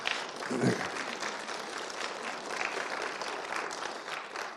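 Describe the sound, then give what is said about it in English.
A church audience claps to welcome new members officially into the church, in steady, dense applause that holds at an even level for several seconds without fading, with a brief voice heard near the start. “Yeah, you can clap.”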